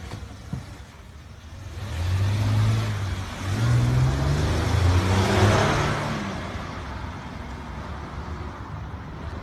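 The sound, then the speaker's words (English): A car engine revs up loudly, its pitch climbing and surging for several seconds before settling back into a steady idle rumble, as the car smashes into a parked car, knocking it into a neighbor's vehicle, and then reverses. “She has just returned to smash my vehicle. She knocked my vehicle into my neighbor's vehicle, and now she is reversing.”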